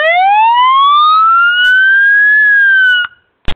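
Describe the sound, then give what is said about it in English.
A loud fire engine siren wails from a fire engine outside, its pitch climbing steadily for about three seconds before cutting off abruptly, followed by a couple of short sharp knocks. “there's a fire engine out there, and there's a fire chief in that engine”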